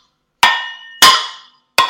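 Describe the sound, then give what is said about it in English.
Fire irons clatter over in three loud metallic clangs, each ringing out with a bright, bell-like tail before the next strikes. No voices are heard. “Oh, dear, you've knocked over the fire irons, which definitely just made a noise.”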